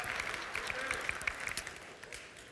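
An audience applauds steadily, a dense wash of many hands clapping at a moderate level that fades slightly toward the end, with faint voices mixed in.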